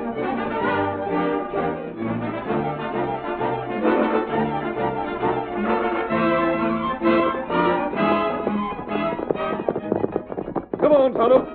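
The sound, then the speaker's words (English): Rapid, rhythmic hoofbeats of the galloping horses Silver and Scout drum steadily throughout, mixed with loud, dramatic music that surges toward the end. “Come on, Silver. Get him up, Scout.”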